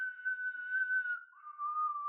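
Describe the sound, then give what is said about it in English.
A person imitates a dog whistling through a candy whistle held in its mouth. The steady, shrill whistled tone dips to a slightly lower pitch halfway through, fairly loud, with no talking. “My dog is whistling?”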